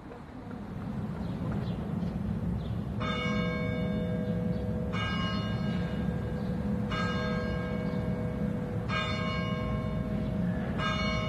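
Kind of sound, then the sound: signal or alarm, church bells ringing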